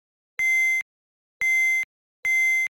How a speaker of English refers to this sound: Then you kind of get like a echo effect. So I think this is a way, like, if I just have pick up a coin, where's the coin? So if I have a coin, but I want it to be echoey and just go into repeat.